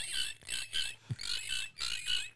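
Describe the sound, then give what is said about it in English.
A person imitates a cricket with a series of high, buzzy chirps, delivered in a steady pulsing rhythm of repeated bursts, fairly loud, with no talking. “I can do a cricket sound.”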